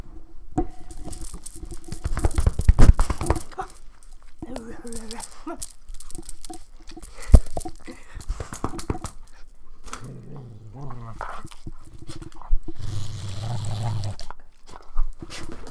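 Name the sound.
dog growling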